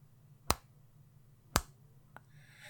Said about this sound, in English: is adamant that it's three finger snaps